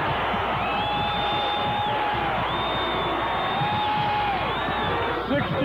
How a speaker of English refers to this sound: here's Midgley going all the way in and drives it home. Listen to the crowd.